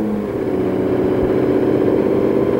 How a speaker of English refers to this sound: Very tight quarters in here. Rubbing elbows. Doors are closed. Pulling out of pit road.